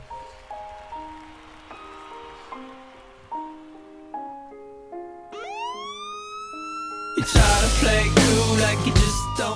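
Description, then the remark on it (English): A police siren in a song winds up in a rising wail after a soft melodic passage, then gives way to a loud, harsh burst of noise near the end. No one speaks. “Police sirens and he's rapping after the”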